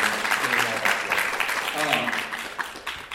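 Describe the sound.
A crowd claps steadily for a few seconds, a dense patter of hands at an even loudness, with some voices murmuring and calling out beneath it.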